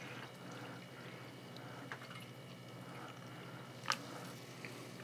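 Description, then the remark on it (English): Sodas are opened carefully and poured: a quiet, steady fizzing pour runs throughout, with a faint hiss of bubbles and a couple of small clinks or drips, one sharper near the end. No one talks. “by opening these sodas very carefully this time. And we are going to pour very ASMR-ly.”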